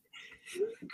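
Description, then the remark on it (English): A soft, breathy intake and faint rustle build up, then a single loud, sharp sneeze bursts out right at the end, abrupt. “God bless you.”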